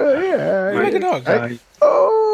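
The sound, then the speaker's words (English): A person imitates a dog howling: loud wavering wails that glide up and down in pitch, a brief pause, then one more sustained howl. “Like a dog.”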